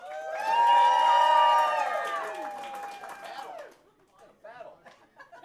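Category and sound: crowd, audience clapping and cheering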